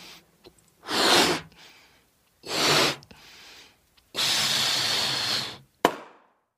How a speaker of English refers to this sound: Uh-oh. Do you know what just happened to my balloon? Yeah, it popped.